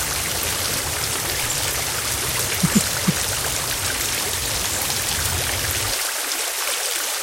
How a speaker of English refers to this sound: Oh shit, it's raining.